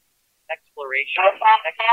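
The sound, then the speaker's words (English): A short blip followed by a muffled, nasal wah-wah sound with sliding pitch, like a muted trombone mimicking garbled speech, playing briefly as the notification when the Lazarillo app is opened, moderately loud. “whenever you open Lazarillo, you get kind of like a notification, and mine is the Charlie Brown teacher”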